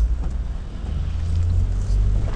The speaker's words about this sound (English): And then now with like all this rain and stuff like that, it's like super not quiet. Got these windshield wipers going cray, and it's like, it's not just raining, it's like pouring, like old man snoring style.